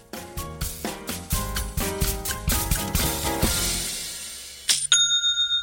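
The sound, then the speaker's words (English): A bright, bell-like Shopify sale notification chime rings out after a few seconds of rhythmic music, its high metallic tone lingering with a shimmering, pulsing decay. “I seriously love that noise. It's the best kind of notification and definitely one of my favorites.”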